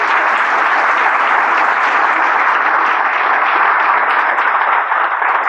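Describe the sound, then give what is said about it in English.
A crowd applauds steadily for the judges of an event, a loud, dense wash of many hands clapping that holds at an even level for several seconds with no voices on top. “Round of applause for our judges.”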